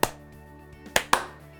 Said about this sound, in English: I heard a late clap there. Oh god. We did it. Also, I heard one in sync with me and one was late.